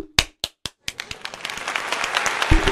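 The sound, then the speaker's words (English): A few sharp, separate claps start things off, then quickly build into a dense, sustained round of applause that swells louder toward the end. “I just think you don't need a whole lot of reasons to give a standing ovation and a round of applause.”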